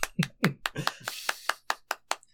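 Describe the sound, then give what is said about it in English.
A brief round of hand clapping: about ten sharp claps in a quick, fairly even rhythm, slightly messy at the start and steadier toward the end, with no talking over them. “Do you want me to clap or something to signify the end? Please clap.”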